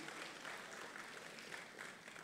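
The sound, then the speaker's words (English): A church audience bursts into steady applause for its pastor and ministry, a dense wash of many hands clapping at an even, sustained level throughout with no voices standing out. “And I just want to really applaud”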